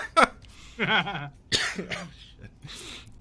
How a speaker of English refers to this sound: God, excuse me. I promised myself I wouldn't cough on a podcast.